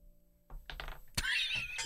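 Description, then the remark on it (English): Dice rolled for an intelligence check in a tabletop role-playing game bounce out of a dice tray: they clatter and tumble in a quick burst of light rattles, then hit with a sharp knock and skitter on in brighter, scraping rolls before stopping. “Kent has a running track record of never making it into the dice tray.”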